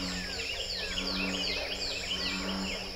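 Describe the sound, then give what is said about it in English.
Bullfrogs drone low and steady beneath a busy chorus of northern cardinals and prothonotary warblers, whose overlapping chirps and whistled phrases repeat throughout a quiet outdoor wetland soundscape recorded in the Big Thicket Natural Preserve. “Let's listen again to America's Ark as bullfrogs sing alongside northern cardinals and prothonotary warblers.”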